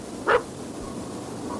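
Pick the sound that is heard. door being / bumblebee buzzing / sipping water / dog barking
dog barking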